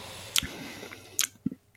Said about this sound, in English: I can hear your lips tasting. It is sour, but it's not super sour.